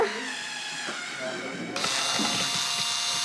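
A power drill whirs steadily while drilling into a wooden bat structure being assembled from a kit with screws, its motor whine and grinding noise jumping louder and harsher about halfway through as it bites in, continuing without pause to the end.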